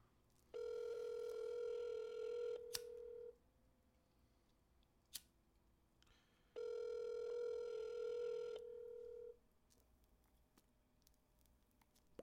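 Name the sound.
phone call ringing tone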